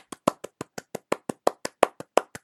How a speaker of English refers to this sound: Round of applause.